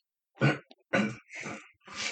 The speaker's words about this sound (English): Why are you coughing like that? What's wrong? I'm not sure. I'm trying to clear my nose. You're coughing to clear your nose. Yeah, it seemed like someone's caught my throat.